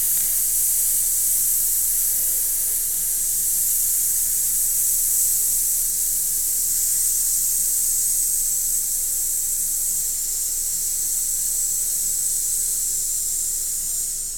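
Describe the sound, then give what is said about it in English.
A single long, steady hiss made by a voice as a breathing exercise done standing after a gentle in-breath: a sharp "tss" held evenly for about fourteen seconds without a break, fairly loud, with no talking. “And then you're going to hold a hiss with tss.”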